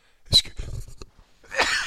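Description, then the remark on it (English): A single sneeze: a sharp, explosive burst, a short voiced breathy stretch, then a loud hissing exhale trailing off at the end. “another sneeze.”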